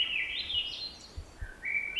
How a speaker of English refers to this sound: Swainson's thrush is a bird species that is more likely to be heard than seen. Its song is an upward spiraling flute-like melody